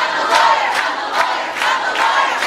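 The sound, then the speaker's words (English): Hundreds of protesting students chant in unison inside a gymnasium, with chants such as "Cut the lawyer", loud and steady, with rhythmic shouted syllables recurring about twice a second over a dense wash of voices. “Like, say, protests where hundreds of students fill a gymnasium and chant things like, "Cut the lawyer."”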